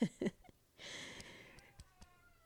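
A long, breathy yawn: two brief voiced sounds, then a drawn-out airy exhale with a faint whining tone that slowly trails off, followed by a couple of soft clicks.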